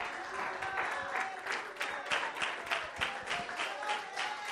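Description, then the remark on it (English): A crowd applauds steadily as a strong hand clap offering to the Lord, many hands clapping in a dense, continuous patter with no pauses, a few faint voices blending in underneath the sustained clapping. “Let's give the Lord a strong hand clap offering, one that he is worthy of.”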